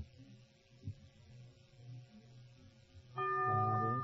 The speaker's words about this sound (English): The bell is tolled. I'm sorry.